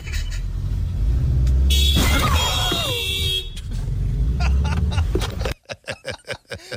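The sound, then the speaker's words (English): A car engine roars as a driver drives off from a drive-thru, then a loud, sudden crash erupts as the car hits another car, with a blaring horn, followed by road noise and a series of sharp rhythmic thumps at the end. “started cursing at a worker, and then drove off and hit another car.”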